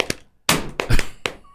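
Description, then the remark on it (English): Hands slap against legs in an Instagram video, in about five sharp, fleshy smacks with an uneven, arrhythmic spacing, a few landing heavier and boomier than the rest, with no talking. “That you think people are going to be interested in a thing of you slapping your legs.”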